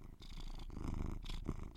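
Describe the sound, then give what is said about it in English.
A male cat purrs steadily and very close to the microphone, a continuous low rumbling vibration with gentle breathy pulses, no talking. “Nah, you just want to purr into the mic.”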